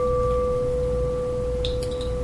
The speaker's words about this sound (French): Essayez d'entendre la cloche. Essayez d'être conscient de la cloche, du son de la cloche, maintenant. Du son exact de cette cloche-ci.